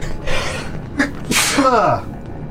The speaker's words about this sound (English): I'm gonna sneeze.